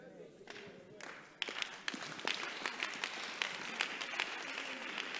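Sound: audience clapping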